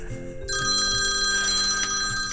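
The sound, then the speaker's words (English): A mobile phone rings with a bright, steady electronic tone that starts abruptly about half a second in and continues loudly over a low background hum. “Oh, my phone's ringing.”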